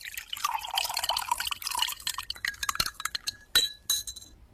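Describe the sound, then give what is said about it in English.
Ice cubes clink against a tall glass as Coca-Cola pours in, a dense crackling hiss followed by several sharp, bright clinks near the end, with no voices. “Take a tall glass, put some ice in it, two fingers of Bombay rum, and a bottle of Coca-Cola.”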